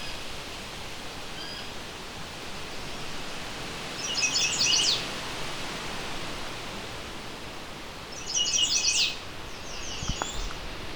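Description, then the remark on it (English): A chestnut-sided warbler on its territory sings two brief, high, sweet phrases about four seconds apart, over a constant rushing hiss like wind or running water. “And I have known chestnut-sided warblers to be rather inconsistent in their territories.”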